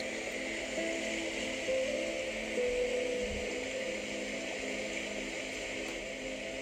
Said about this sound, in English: As you breathe slowly with your eyes closed, you start hearing the sound of rushing water.